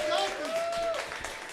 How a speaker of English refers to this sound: Give JJ a little round of applause.